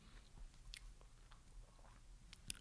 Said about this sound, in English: So many swallowing noises so close to such an expensive microphone.